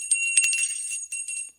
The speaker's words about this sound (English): See what I did there? It's a bell.